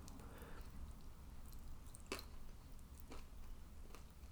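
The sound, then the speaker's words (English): Chewing of crunchy, soggy food, with a few sharp crunches spaced a second or so apart over soft, wet squishing and a low steady background hum. “Oh, the crunch balanced with the sog.”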